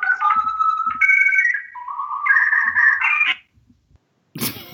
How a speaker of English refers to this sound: I also like the beep boops that we do when we do it. The beep boops come right after she says that, but you interrupted them.